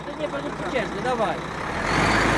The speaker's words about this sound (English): It's just after 9 p.m., and he and two other Polish protesters are finally allowing five trucks to pass their blockade.